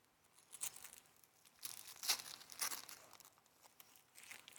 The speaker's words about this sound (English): I'll take that paper, and you can open that gift. Let's see what that is.